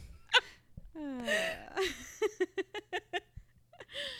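Up close, someone lets out a drawn-out yawn with a falling, voiced sigh, followed by a quick run of short, breathy bursts and a final exhale.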